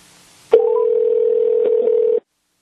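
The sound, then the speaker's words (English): A brief hiss of line noise gives way to a loud, steady telephone ringing tone as a call is dialed to an old home phone number, holding for almost two seconds and then cutting off abruptly. No one speaks. “Keep ringing.”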